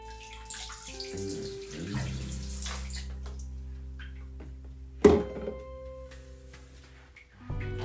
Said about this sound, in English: Let me check on this water. Ooh-wee. Oh, man, that bath is looking beautiful. That bath is looking beautiful. The bubbles are crazy.